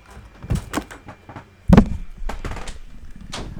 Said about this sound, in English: Close the door. Lock it.